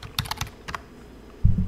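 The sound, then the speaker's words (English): Several quick clicks of typing on a computer keyboard in a short uneven burst, followed by a pause and then a dull low thump. “I can't quite see the keys on the keyboard sometimes, so maybe this is going to work.”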